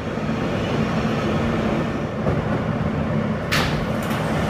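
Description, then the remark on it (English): A Manhattan-bound F train running via the E line rumbles steadily between Court Square, 23rd Street and Lexington Avenue, 53rd Street stations, a loud continuous roar with a low hum beneath it and a brief sharp hiss or screech near the end. No one speaks. “This is a Manhattan-bound F train via the E line.”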